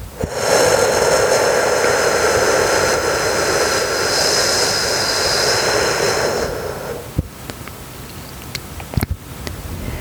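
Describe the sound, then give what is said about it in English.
A long, steady whooshing exhale through the mouth for a count of eight in a breathing exercise, a loud breathy hiss lasting about six seconds before stopping abruptly, followed by near-quiet with a few faint clicks. No one speaks. “Exhale completely through your mouth, making the whooshing sound for a count of 8.”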